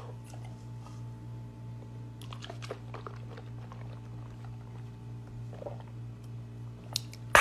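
Faint wet mouth sounds of pickle juice being swished and gulped, soft squishy clicks scattered over a steady low hum, with a sharper gulp near the end and no talking.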